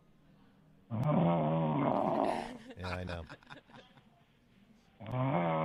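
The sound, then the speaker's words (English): Loud, rasping snores of a caller in Delaware who fell asleep come through a thin telephone line, one long drawn-out snore, then a brief exchange of voices, then another snore starting up at the end. “I think this is a real snore.”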